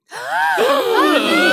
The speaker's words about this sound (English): Oh, no! Gasp! Oh, no! Gasp.